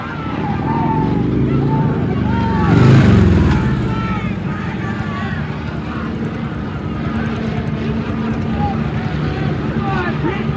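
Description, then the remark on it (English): The small motor engines of four police motor scooters drone steadily, one swelling louder as it passes, over a busy crowd of young demonstrators on a highway where traffic has stopped, with scattered voices talking and calling out. “And here come the police. 1, 2, 3, 4 police on motor scooters.”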